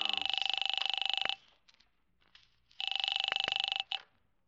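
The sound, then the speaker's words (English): A telephone bell in the hall rings twice, each ring a loud, bright, rapidly trilling burst lasting about a second, separated by a short pause with faint rustling in between. “Where's the phone? In the hall.”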